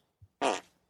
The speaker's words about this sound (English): Just I love the meekness of the fart sound you chose.